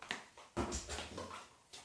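A dog whimpers softly in a couple of short, whiny bursts, fairly quiet, with a faint click just before and no one talking.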